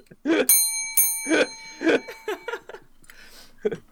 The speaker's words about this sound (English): You're gonna have to ring that bell.